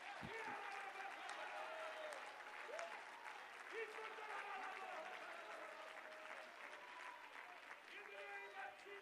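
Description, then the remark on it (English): An audience claps hands in sustained, dense applause, a steady wash of many overlapping claps with voices shouting "God said it, it's going to happen" rising through it for several seconds. “Would you clap your hands and shout, God said it, it's going to happen.”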